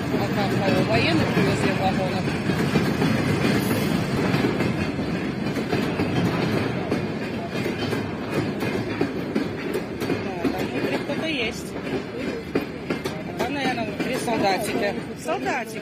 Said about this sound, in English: Anyway, and from what I can tell, it's actually troop transport vehicles that are on top of trains, which you guys will see. And the passenger train is going to be holding what I would assume to be Belarusian troops.